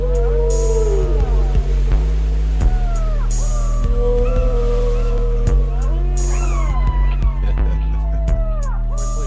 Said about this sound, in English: I don't think that's a little fella. Oh, big fella. Big whale.